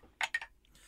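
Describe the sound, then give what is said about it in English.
Two quick bright clinks of non-typical beer glasses holding Star Stuff American Pale Ale from Devil May Care, ringing out sharply in a toast, followed by a faint, brief higher tinkle and low background hiss. “Let's cheers.”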